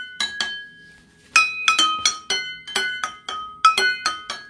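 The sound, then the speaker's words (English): A bell chime struck about ten times in a quick, uneven pattern, each bright, high metallic ring sustaining briefly before the next, with a short pause after the first two strikes. “Let's just do a bells chime.”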